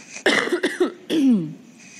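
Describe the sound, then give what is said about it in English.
A person coughs: two quick harsh bursts, then a longer raspy cough that trails off, with no talking around it. “So, excuse me a minute, I'm going to cough.”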